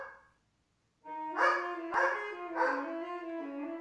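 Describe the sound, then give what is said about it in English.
A tenor saxophone, played by a son at home, holds a sustained note while a dog barks and howls along in three loud bursts, after a brief quiet start. “So this is my son playing tenor sax and the dog barking along with it.”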